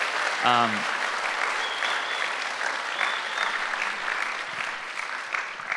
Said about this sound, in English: Can we give our hospitality volunteers a big round of applause?